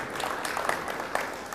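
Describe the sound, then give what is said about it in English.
A crowd at a youth church applauds, with many hands clapping in a dense, steady patter at moderate volume. A few sharper claps stand out briefly against the wash of sound. “You guys need to give them a big round of applause for what they're doing here at Ignite Youth Church.”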